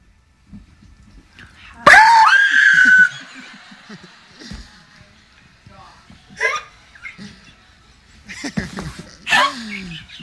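woman screaming in fright

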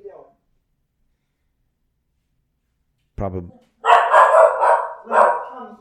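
dog barking

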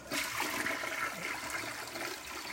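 toilet flushing

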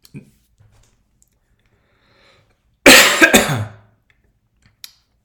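coughing and throat clearing

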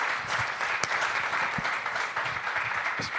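audience applause and cheering

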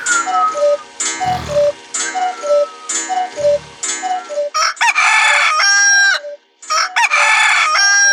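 rooster crowing

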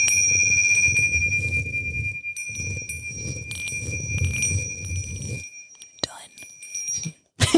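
bell ding

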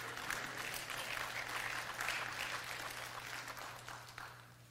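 audience clapping

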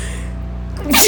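sneeze

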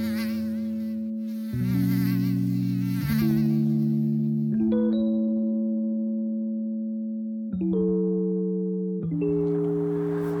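mosquitoes buzzing

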